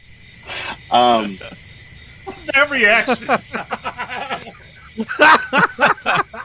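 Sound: cricket chirping sound effect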